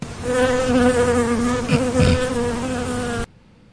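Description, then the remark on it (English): A fly buzzes steadily for about three seconds, a droning hum with wavering pitch and stacked overtones, briefly rising in intensity midway before cutting off abruptly into quiet. “Nice fly at the end.”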